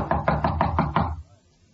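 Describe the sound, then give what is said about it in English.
Six quick, evenly spaced knocks on the door of Punchy's room at the end of the hall, fairly loud, followed by a brief fading silence. No voices are heard. “Knock again.”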